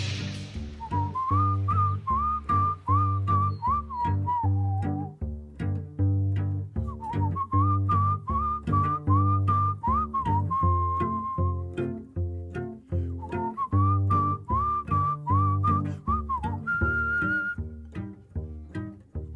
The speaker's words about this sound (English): Now that whistling, that melody is the one from